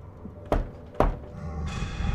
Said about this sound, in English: He heard a knock at the door. It started as a normal knocking. Then it got louder.